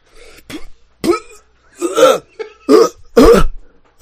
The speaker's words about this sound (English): You're just like coughing out like stench clouds. That's me coughing as I come out of it.